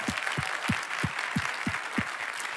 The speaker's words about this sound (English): And I just want to stop for a moment. We've done a lot of clapping and just celebrate